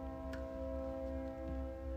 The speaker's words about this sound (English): Yeah, sorry if you guys heard that train horn go off. We're right next to a train track. So we'll just try to speak over it for a second. It should be gone.